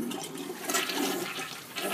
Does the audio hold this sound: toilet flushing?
yes